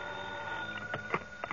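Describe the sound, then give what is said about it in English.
An old telephone beside a bed jangles in short bursts over a steady background hum, ringing a few times in quick succession with no one speaking. “I'd no sooner rolled over in the hope of getting back to sleep when the phone beside my bed started jangling again.”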